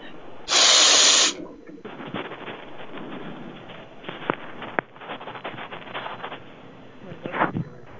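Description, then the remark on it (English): A single loud, harsh burst of breathy hissing, like a sharp sniff into a phone mic, followed by crackly rustling handling noise with a few sharp clicks. “Sorry, he's sniffing the phone.”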